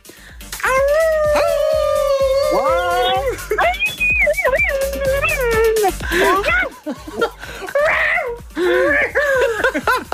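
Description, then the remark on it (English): A man on a phone call imitates a wolf howl, loud, with long drawn-out wavering cries that rise and fall in pitch and continue for about ten seconds, growing rougher toward the end. “he loves, every time he chats to us, being a wolf”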